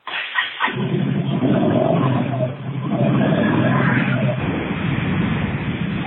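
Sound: motorcycle engine running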